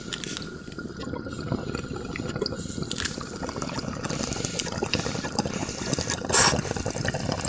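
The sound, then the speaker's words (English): Steady gurgling water bubbling as someone hits a bowl, a dense rapid churn of low bubbles throughout, with a brief louder hiss and burst near the end. No one speaks. “Posting a picture of the bowl that I'm hitting right now on Twitter after the show, okay?”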